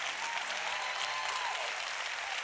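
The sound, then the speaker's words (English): A church audience applauds as praise to Jesus and God, a dense, even wash of many hands clapping at once with no pauses, loud and sustained throughout. “Come on, can you clap like God's been good to you?”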